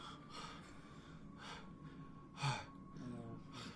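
A man's heavy mouth breathing into someone's ear, a series of loud, airy inhales and exhales repeating roughly every second over a faint background hum.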